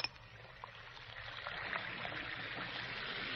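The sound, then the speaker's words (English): Two Alka-Seltzer effervescent tablets, dropped from the package into a glass of water, fizz with a steady, soft crackling hiss and tiny popping bubbles that grows slightly fuller over a few seconds. No one speaks. “You hear that fizzing, sparkling sound?”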